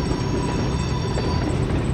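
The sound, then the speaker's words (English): A train rumbles steadily along the tracks, a dense, continuous roar of rolling cars with a constant mechanical hum and no voices. “Follow Route 3 and the railroad tracks a few miles south from the disaster scene”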